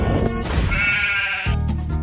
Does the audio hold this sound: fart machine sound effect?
no